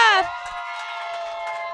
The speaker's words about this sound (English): That's a lot of applause. That's a lot. Okay, you guys, that's a lot of applause.